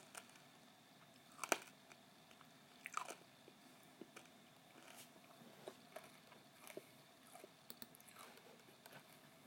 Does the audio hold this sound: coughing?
no